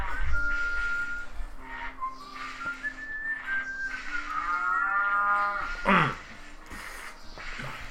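A cow lets out a drawn-out moo with a sliding pitch, ending in a louder rough bellow, while thin whistle-like tones and faint background noise carry on around it.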